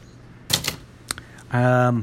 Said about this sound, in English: You can also hear this. There's a typewriter.